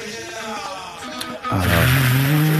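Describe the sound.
Someone imitates the engine of a running car with their voice for a scene being read aloud, a wavering hum that jumps into a louder, sustained revving drone halfway through, continuous.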